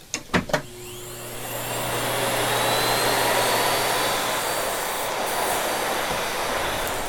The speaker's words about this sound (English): One company that I love is a company called Miele out of Germany. And listening to a Miele vacuum fire up is just a beautiful sound.